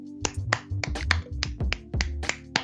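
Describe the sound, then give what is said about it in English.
A single person claps alone in a steady, evenly spaced rhythm, about nine sharp claps, at a massive house during lockdown with no neighbours nearby joining in, with a low steady hum underneath and no other voices or applause. “Possibly made even funnier by the fact that because they live in a massive house, it's not like they've got any neighbours nearby that will also be clapping, so it's just dead silence and them going.”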